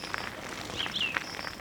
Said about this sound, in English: Being assaulted by birdsong.